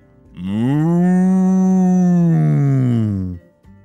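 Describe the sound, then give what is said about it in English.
A single long, loud moo from one very large cow, drawn out for about three seconds, with a deep, steady tone that swells and then fades. No other sounds accompany it. “There were deer and horses and pigs and one very large cow.”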